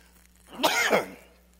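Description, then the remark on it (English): A single short, throaty cough, a rough burst lasting under half a second and set against a quiet background hum. “Yeah, so this year, I'm going to take a little cough drop here. Sorry about that.”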